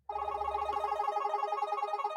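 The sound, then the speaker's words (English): A bright electronic tune from a phone's number-wheel app, spun to pick a number, plays steadily for about two seconds, its tones fluttering rapidly as if ticking past, heard alone with no talking. “we're going to pick the new wheel or the number for the wheel numbers. Right now. Not so, with my phone.”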